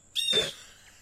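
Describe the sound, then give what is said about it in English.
A single short bird call, a bright whistled note with a harsh, squawky edge, lasting about half a second, fairly close, followed by quiet background. “No, and he says, do you hear that? It's a red-throated wobbler.”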